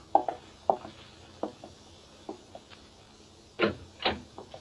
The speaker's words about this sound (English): I pulled myself together and went out and opened the door.